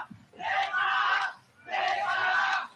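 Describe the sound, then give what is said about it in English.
A large wrestling crowd yells in Japanese in unison: two loud chant-like bursts of many voices with a short pause between them, an arena audience shouting a phrase together. “Okay, I don't speak Japanese. What are they yelling?”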